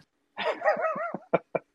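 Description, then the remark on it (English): A dog licking a person makes a drawn-out whiny, slurping sound, followed by three quick wet licking smacks spaced evenly apart. No one speaks. “I swear I heard him getting licked by a dog.”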